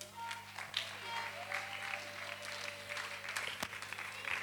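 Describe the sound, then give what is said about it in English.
A crowd claps steadily for several seconds, a dense, continuous patter of applause with scattered brighter claps and a faint steady hum underneath, welcoming a woman up to give a solo ministration. “I give her a round of applause.”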